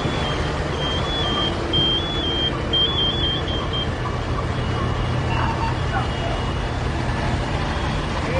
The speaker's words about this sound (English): The beeping sound that you keep hearing is their alarm on their oxygen tanks.